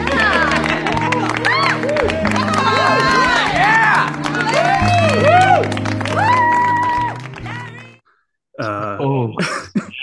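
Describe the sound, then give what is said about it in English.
A crowd claps and cheers for about eight seconds, dense steady applause mixed with whoops and tonal shouts, then a brief hush before voices pick up again. “Ding, ding, applause, please.”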